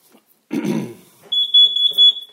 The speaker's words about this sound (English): So if I want to test it, I can just hit this test button here. And you just heard that. And that's the CO detector.